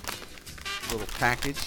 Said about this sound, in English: Little package sound. All right, a bonus. Bonus package sound. So I know things it's not. Here we go. Not really. Everything comes in a package like that. Oh, okay. It's a chip. Something crispy.